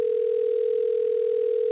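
signal or alarm, telephone dial tone

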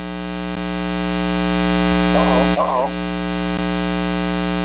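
fault, static

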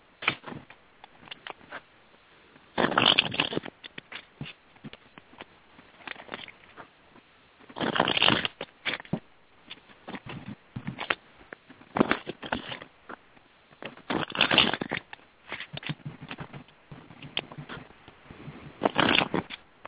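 household object, shuffling tarot cards

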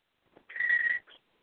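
bird, pet bird whistling

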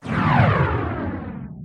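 sound effect, whoosh sound effect

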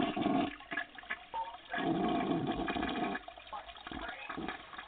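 sound effect, toilet flushing

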